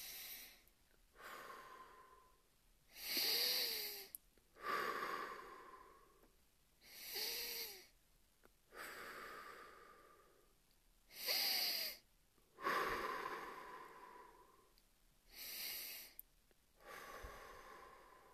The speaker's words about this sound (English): Close your eyes. Take a deep breath. In through your nose and out through your mouth. Do it 5 times. Let's do it together.